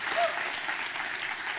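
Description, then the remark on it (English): A crowd applauds and cheers the news of closing on the purchase of their building, a dense, even wash of clapping that holds at a constant level throughout, with a brief high whoop of cheering near the start. “But anyway, I want to give all of you, no matter what your color, what your team, or what your favorite sport, I want to give all of you a reason to cheer.”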